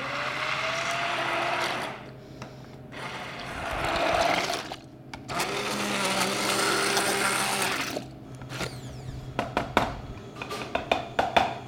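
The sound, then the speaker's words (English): An immersion blender whirs loudly in long bursts with brief pauses as it blends cream cheese, potatoes and broth for soup in a small tilted bowl, followed by a series of sharp clinks and taps as it's lifted and knocked against the container. “So you do want to make sure that you have kind of a small bowl, you tilt it to the side, and you stick your immersion blender all the way in.”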